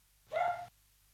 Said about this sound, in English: Well, I just stopped my dog barking.